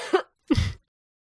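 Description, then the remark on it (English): Two short, rough throat-clearing coughs, the second one heavier and lower, separated by a brief pause with no talking. “stop coughing.”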